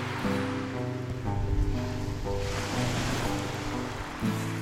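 Ocean surf rolls in a steady, hissing wash, swelling and receding over several seconds, with a low sustained musical drone humming beneath it and no voices.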